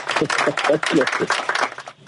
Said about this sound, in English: So glad to have you on the program, man. Give a man a hand clap of applause. Give a man a hand clap. Here it comes. There it comes.